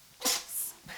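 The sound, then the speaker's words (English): A cat sneezes right next to the speaker: a small, sharp sneeze, a quick breathy hiss with a short high fizz trailing after it, followed by a faint second puff. No one speaks. “The cat's right next to me. She's just sneezing and she's sprayed all over my arm.”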